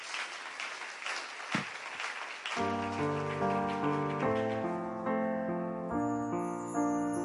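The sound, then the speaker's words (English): A worship audience claps hands with the Lord as they are being seated, dense and steady, then sustained instrumental music begins while the clapping carries on underneath it. “Why don't you clap your hands with the Lord as you're being seated.”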